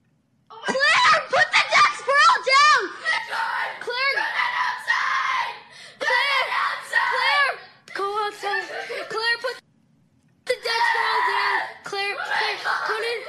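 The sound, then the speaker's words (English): A girl in the background screams in a string of shrill, high-pitched shrieks and wails that rise and fall, loud and nearly continuous over several seconds, broken by a couple of brief pauses. “listen to the girl in the background. She's screaming.”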